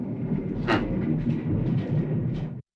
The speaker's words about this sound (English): In that clip, you can hear an airplane going overhead.